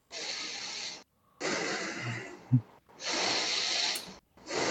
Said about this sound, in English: Somebody's breathing really heavily.